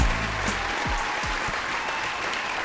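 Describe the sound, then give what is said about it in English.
Steady audience applause welcoming the hosts of the show Done Being Single, a dense wash of many hands clapping at a constant loud level throughout, with a few low thumps near the start and no voices. “Welcome, and that applause is, well, it's for us, but you know what?”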